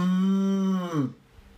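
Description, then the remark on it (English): A person imitates a cow's moo: one loud, sustained low droning note held for about a second, sliding down in pitch before cutting off into quiet. “I'd try and calm them down. I'd probably try and moo.”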